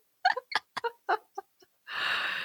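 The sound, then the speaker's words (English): A dove clucks in a rapid string of six or seven short clucks that fade slightly, followed by a longer, harsh, breathy squawk at the end. No one speaks. “Come a in. A bird.”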